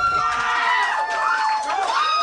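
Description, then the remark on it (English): A small crowd, about seven enthusiastic people, reacts with scattered applause and high, wavering whoops and cheers that hold steady at a moderate level for a couple of seconds. “This is a smattering of applause.”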